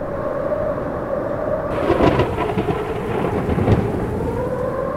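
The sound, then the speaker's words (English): A steady wash of heavy rain with deep rumbles of thunder rolling through, building to a louder crack and boom around the middle, then continuing to grumble beneath the downpour. “S is for storm.”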